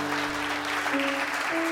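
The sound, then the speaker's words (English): A round of applause: many hands clapping in a dense, steady wash of sound at an even volume, with faint sustained tones humming underneath and no voices. “I think we should give it a round of applause.”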